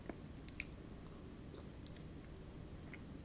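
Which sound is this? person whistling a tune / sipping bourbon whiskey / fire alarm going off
sipping bourbon whiskey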